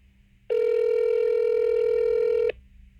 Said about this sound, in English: You can hear my phone ringing.